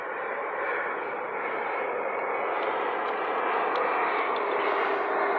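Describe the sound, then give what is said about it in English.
A steady, broad roar of a private jet with about six windows flying in overhead, holding an even loudness throughout with a faint high whine on top and no voices. “Look at that airplane flying in.”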